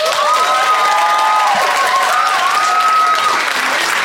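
A crowd applauds steadily and loudly throughout, with dense clapping mixed with cheers and a few whoops rising above it.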